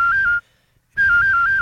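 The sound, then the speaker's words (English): A professional whistler whistles an imitation of a cell phone ringing: a bright, steady high-pitched tone with a quick warbling trill, broken by a short silence before a second ring starts. “Like, for example, I can imitate a cell phone.”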